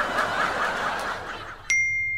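A phone's text message alert sounds once as a text message is received: a single bright, clear chime that rings out and fades slowly, right after a stretch of noisy, murmuring laughter that suddenly stops.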